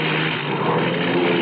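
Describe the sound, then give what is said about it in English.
The engine of an overloaded propeller plane carrying machinery as cargo drones steadily and loudly throughout, a constant roar with a low humming tone running underneath and no voices. “The plane was overloaded. The old undercarriage couldn't take it.”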